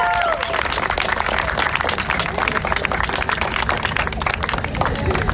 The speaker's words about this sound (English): Thank you. Clap it up for yourself.